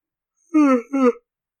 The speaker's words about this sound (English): Yeah, I'm yawning.